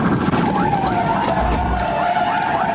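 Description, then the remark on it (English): A state trooper's police car siren wails steadily during a traffic stop for speeding on a highway, its tone wavering slightly, over the low rumble of a moving car and road noise. No one speaks. “When the driver hears the sirens, she slows down and turns on her flashers.”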